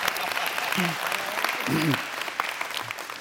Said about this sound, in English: Now, yeah, you can clap for that.